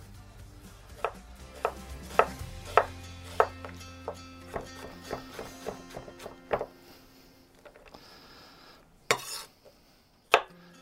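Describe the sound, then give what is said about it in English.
A knife dices a small red onion on a cutting board: a quick, steady run of about a dozen crisp taps, then a pause before two louder, sharper chops. No one speaks. “Okay, so all I'm gonna do here, I'm gonna dice this little red onion up.”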